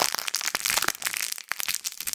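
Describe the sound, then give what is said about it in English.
Sweet wrapper paper crinkling in quick, irregular bursts of sharp, bright crackles, dense and continuous for about two seconds, with no voices over it. “This sweet paper.”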